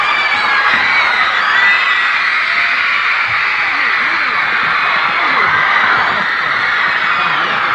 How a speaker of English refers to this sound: But this, I never heard or saw such bedlam in my life. Yeah. Now, when they're finished, the screams keep going on.